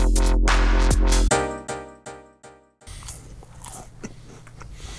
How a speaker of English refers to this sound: Everybody chew into the mic.